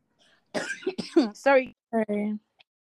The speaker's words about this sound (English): I really apologize for the cough.